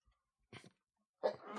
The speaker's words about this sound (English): Gesundheit.